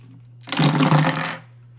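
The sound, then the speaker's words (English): Dice rattle and clatter in a loud, dense burst lasting about a second, then stop abruptly, leaving only a low steady hum underneath. No one speaks. “Okay, so I'd recommend just rolling your standard dice twice.”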